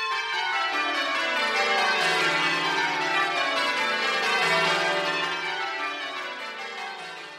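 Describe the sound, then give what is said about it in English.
Church bells in Cornwall peal continuously, several overlapping tones ringing in a rich, steady cascade that fills the space before slowly fading slightly toward the end; no voices are heard. “Or you could just go along when you hear the bells ringing.”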